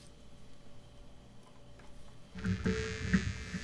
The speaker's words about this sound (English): It even gets static sound.